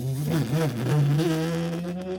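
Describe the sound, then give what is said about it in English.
A voice imitates a humming motorcycle engine: a steady, buzzy low drone with a wavering pitch that rises and dips slightly, held continuously for about two seconds. “We come in on the humming of a motorcycle engine.”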